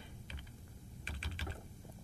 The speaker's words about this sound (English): Give me a second while I'm hunting and pecking on the keyboard.